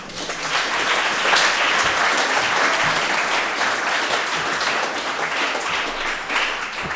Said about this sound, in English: So anyway, without further ado, please give a nice warm Conway Hall round of applause for Guy.